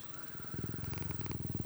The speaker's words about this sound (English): I'm joined today, and I'm joined, as always, by my big fat cat, Ichabod. He's sitting on my lap. He's purring. You may hear him in the mic.